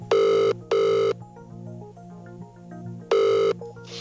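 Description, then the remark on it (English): A telephone rings loudly in a buzzing double ring, pauses, then starts ringing again, with soft background music playing underneath and no one speaking. “If this is how the scams now work, we thought we'd find out just how easy it would be to create a fake so good that it could fool your parents in a phone call.”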